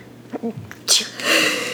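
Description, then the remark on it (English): A single loud sneeze: a few short voiced catches as the breath builds, then a sharp explosive burst trailing off into a long breathy hiss. “Achoo. It's so weird. Yeah, bless this is again.”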